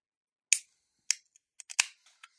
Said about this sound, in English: The first thing I can tell you is that right after that crack of the can, you get the hops coming out of the can immediately, which is what you'd want, right?